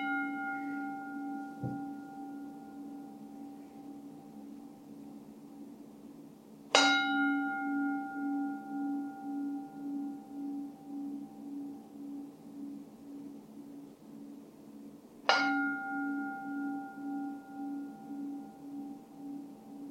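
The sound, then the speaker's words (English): At 8 o'clock, a meditation gong rings three times, several seconds apart, each stroke blooming into a long, shimmering tone with a slow pulsing hum that lingers and fades. No one speaks. “So I'm going to ring the gong 3 times.”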